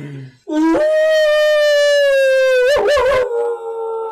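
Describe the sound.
A person imitates a wolf howl: one long, loud, sustained tone that rises and holds steady, wavers and breaks near the end, then trails off into a lower held note.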